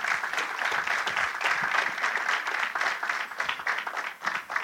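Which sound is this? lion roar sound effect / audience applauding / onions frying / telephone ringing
audience applauding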